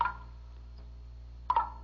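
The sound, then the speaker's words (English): Two separate drops of water fall off a big leaf about a second and a half apart, each a bright plink that rings briefly over a low, steady background hum. “Water. I hear water. It's water. Dolly. Dolly, don't go out there. It's water. It's dripping off that big leaf.”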